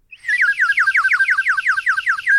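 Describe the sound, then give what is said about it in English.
A water-filled whistle blown in a loud, continuous warbling trill as air passes through the water inside it, rapid bubbly chirps repeating about five times a second at a high, bird-like pitch, with no talking. “It's just cool design so that when the air is passing through the water, it makes that very distinctive chirping sound.”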